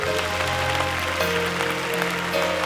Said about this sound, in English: Now I want everybody to clap your hands.